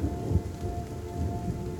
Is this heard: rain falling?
yes